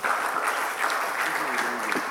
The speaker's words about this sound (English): Can you clap for him?